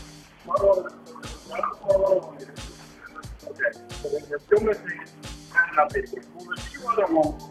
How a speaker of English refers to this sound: That's a butt dial.